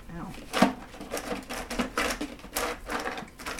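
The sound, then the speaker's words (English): Irregular clattering and scraping as a hand blindly digs through one clumped chunk of fridge ice in a cooler, a steady run of gritty rattles and knocks with a faint voice murmuring underneath. “Okay, blindly reach into our mystery cooler and give us something good.”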